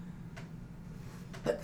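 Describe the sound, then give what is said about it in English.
A short, muffled sneeze near the end, preceded by a faint breathy catch, fairly quiet against a steady low background hum. “Bless you.”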